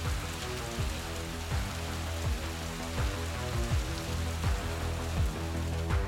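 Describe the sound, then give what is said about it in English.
Steady rain pours down in a constant, even hiss with dense pattering, while low droning tones and soft periodic thumps sit underneath. No one speaks. “And there's just a little nod as the rain continues.”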